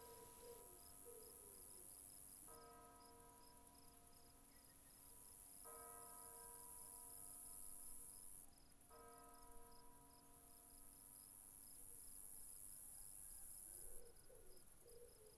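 Chapel bells toll three slow, evenly spaced strikes on an autumn afternoon, each ringing out and fading, while a steady chorus of crickets chirps throughout in an open outdoor setting.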